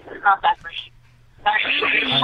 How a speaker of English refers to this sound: Can you lower your speakers though? Because the echo is coming through on the phone.